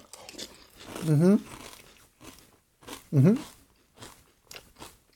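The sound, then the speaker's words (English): Crunchy chewing of Frosted Flakes cereal with organic 1% milk, with sharp crackling bites scattered across the moment and two short voiced murmurs of enjoyment in between. “Mine is super crunchy due to the bag you can't open.”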